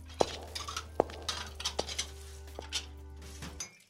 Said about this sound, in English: What are you doing? I'm cleaning dishes.